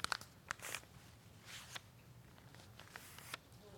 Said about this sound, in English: It's getting hard to fold there, parts of it, isn't it? Well, it is for me. I have thicker paper.